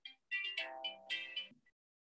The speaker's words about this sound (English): Oh, hang on. My son's ringing me.